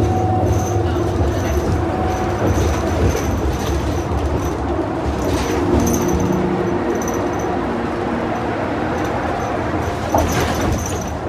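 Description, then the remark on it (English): A loud old train rumbles steadily past, a continuous heavy clatter with faint metallic whines and squeals riding on top, lasting the whole stretch with no talking. “The fucking old train.”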